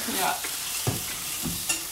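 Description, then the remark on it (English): Chopped-up, cooked placenta frying with eggs in a pan: a steady hissing sizzle broken by a few soft scrapes and thumps of stirring, with no one talking. “we combined the chopped up and cooked placenta with some eggs”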